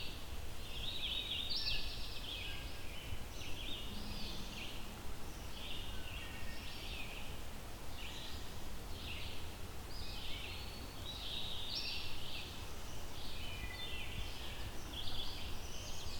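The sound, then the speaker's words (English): A bird in the Mahon Tract repeats a short, fairly brief whistled song every couple of seconds, the high clear phrases sounding over a steady background hiss and low rumble. “It's a very whistly bird, as you can hear.”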